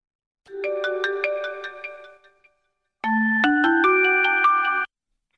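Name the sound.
telephone ringing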